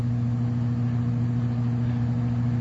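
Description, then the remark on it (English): A smoke eater air cleaner running loudly, a steady unbroken motor drone with a strong low hum and a wash of airy fan noise on top, constant throughout with no talking. “Well, now, anybody who can't hear the sound of that smoke eater has got to be deaf.”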